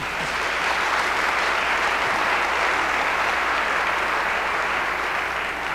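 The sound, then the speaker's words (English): An enthusiastic audience at a forum at Westminster applauds loudly and without pause, a dense, steady wash of many hands clapping for about six seconds, with no voices standing out above it. “I also hope he has as enthusiastic a crowd as we have today here at Westminster.”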